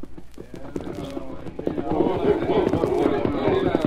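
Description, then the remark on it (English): Several horses' hooves clip-clop in a quick, uneven trotting rhythm, steady, growing a little louder and busier partway through as the group moves along. Eight men on horseback ride toward their mounted leader in a wild, barren region along the Rio Grande. “When they had finished, each man jumped to the saddle and urged his horse toward their leader, already mounted and waiting.”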